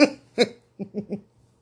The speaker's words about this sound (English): You don't like me in the white belch. You like when I belch? Oh, God.